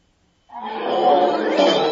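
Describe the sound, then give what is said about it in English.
After a brief silence, a human voice lets out a sustained, loud, growling roar imitating a big cat, holding steady for over a second. “Or, if you're not sure what to dance along to, give me a mighty roar, and I'll choose a song for you.”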